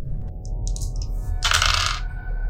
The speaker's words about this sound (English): I dropped the dice, so I'm gonna go pick it up.